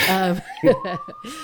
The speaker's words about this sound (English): I'm sorry, but like there's an ambulance. No, it's okay. Hey, medical emergencies are allowed. And I hope that ambulance gets somebody to the hospital quickly.